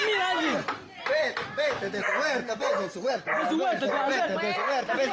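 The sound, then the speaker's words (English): A dog barks furiously and nonstop, loud, in rapid overlapping bursts, in a played video, while people shout over the noise throughout, trying to get the dogs into the backyard. “And the dog, because the dog is obviously irate.”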